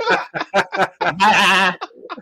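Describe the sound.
A person does a loud imitation of a sheep bleating: several short choppy vocal bursts, then one long wavering, quavering baa, followed by a couple of quieter trailing sounds.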